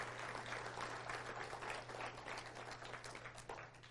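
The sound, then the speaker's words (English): An audience breaks into steady, dense applause as a round of applause for God, many hands clapping at once in a continuous wash of sound for several seconds, with a low electrical hum running underneath. “Can we give God a round of applause for what he's doing?”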